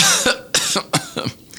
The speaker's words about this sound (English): He coughed multiple times before speaking flamboyantly.